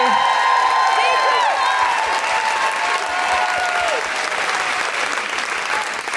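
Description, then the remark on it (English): A large crowd bursts into sustained, dense, loud applause for a performer, with scattered cheers and whoops rising over the steady clapping throughout. “Can I have a really huge round of applause for the amazing Miranda Kane?”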